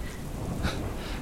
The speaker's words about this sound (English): You're out in the rain?